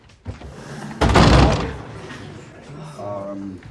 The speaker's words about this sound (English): and Brian F. O'Byrne as Leon, the kind of the kingpin of the whole situation, walks over to the door to sympathise with her, and she slams the door in his face.